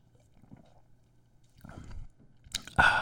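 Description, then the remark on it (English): Someone drinks beer: a few soft wet swallowing and mouth sounds over a low steady hum, then two sharper, louder bursts near the end, with no talking. “Let me drink this beer real quick.”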